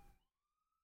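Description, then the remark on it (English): A police car siren wails faintly as the car drives by in Bushwick, New York City, a single sustained tone sliding slowly upward, heard on its own with no one talking. “I love the police car driving by.”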